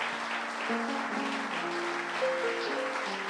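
A steady round of applause from a crowd, a dense, even wash of clapping that holds for the whole stretch, with a few low sustained musical notes playing underneath.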